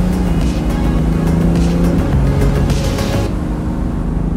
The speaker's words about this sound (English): You gotta speed up and then hit sport mode. Okay. Man, I know we are supposed to, like, care about the environment and all, but there is nothing like an old-fashioned sports car. Open it up! Whoa! Okay, you were right. This is lit.